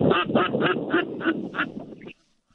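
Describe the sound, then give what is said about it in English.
A white pintail duck flying overhead calls in a quick, even series of about seven loud, raspy notes, clear with no talking, then stops abruptly into silence. “Look above us. That big old white pintail straight.”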